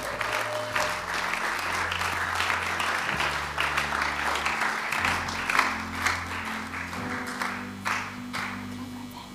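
Sustained audience applause, a dense steady clatter of many hands clapping for about nine seconds, with low held musical notes humming underneath throughout.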